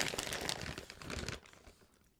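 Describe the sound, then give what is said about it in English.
Crinkling of a plastic bag of slow-baked, apple-pie-flavored granola being opened, a dense burst of crackly rustling for over a second that then trails off into quieter handling. “Y'all hear that rustling in the background?”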